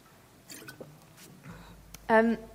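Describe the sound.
Quiet slurping and wet mouth sounds of a speaker taking a quick sip of a drink, ending in a brief, louder voiced sound like a satisfied exhale.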